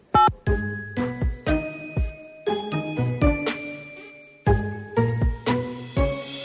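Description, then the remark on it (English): A bright, tinkling theme jingle, played by dialing 1 on a phone, plays alone: a quick melody of bell-like chiming notes struck in repeated phrases, each ringing briefly before the next, clear. “could you do us a favour and dial 1 on your phone? It plays our theme music.”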